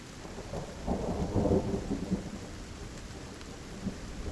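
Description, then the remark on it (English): Low rolling thunder swells and rumbles over steady rainfall, peaking early then easing back into a continuous wash of rain with a faint rumble near the end. “With rolling thunder and cracking of lightning, the clouds gather together and continue to shed rain down on the plains of Moitura.”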